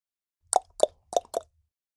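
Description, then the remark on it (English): A relaxed knock on a door: four moderate, hollow raps in two loose pairs, with a short pause between them and silence around them. “Knock on door.”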